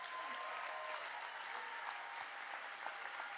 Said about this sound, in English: Come on, Higher Vision. If you're going to clap, give God a big hand clap. Come on.